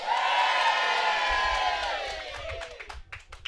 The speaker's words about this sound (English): audience here, and also just to make everybody that chose Cloudwater over us feel like they're really missing out on something from this tent, we're going to ask you to give a really big cheer. So, ladies and gentlemen, welcome to Hopinions Live.